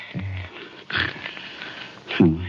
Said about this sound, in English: So what do we do, sit here and listen to him snore?